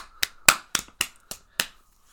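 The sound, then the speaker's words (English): Six crisp hand slaps land in a quick, slightly uneven patty-cake rhythm, each a sharp smack that fades fast, with no voices over them. “slapping each other's hands.”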